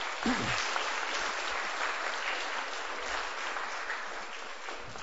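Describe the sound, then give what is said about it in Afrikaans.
Steady audience applause fills the whole stretch, a dense wash of clapping hands holding a fairly even level throughout, with a brief low voice sound near the start. The audience is clapping for a group of men who volunteered as guinea pigs. “Geef die mannen een lekker stijf aan het klap, julle.”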